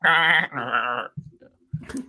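animal, sheep bleating

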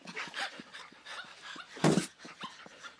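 animal, puppies whimpering

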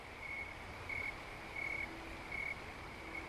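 insect, snowy tree cricket chirping

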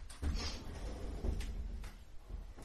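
household object, door creaking

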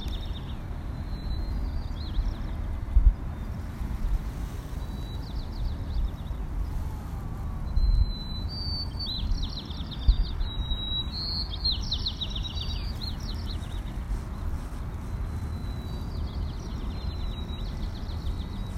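bird, birds singing and calling

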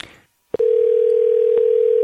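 signal or alarm, telephone dial tone

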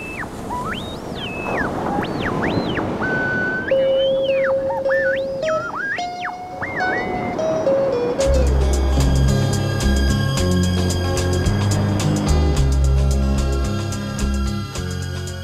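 nature, ocean waves

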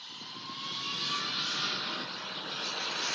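vehicle, airplane flying

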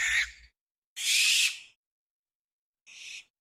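bird, barn owl call

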